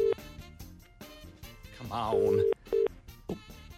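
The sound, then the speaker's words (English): Telephone tones over background talk: a short beep, then a longer steady tone followed by a brief second one, like a call being dialed and ringing out on the line. “Let's give someone a call now.”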